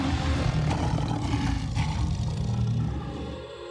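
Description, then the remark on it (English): A crowd of people roars loudly together, imitating lions, in a sustained, dense wall of voices that swells and holds for several seconds before easing slightly at the end. “Tell my lions, roar once again.”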